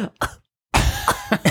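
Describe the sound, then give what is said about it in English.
A person fakes a harsh coughing fit, reenacting coughing from the smell of Tabasco hot sauce fumes: two quick coughs, a brief silence, then a longer, raspy run of repeated hacking coughs and throat-clearing sounds. “He smells it and he coughs for the rest of his life.”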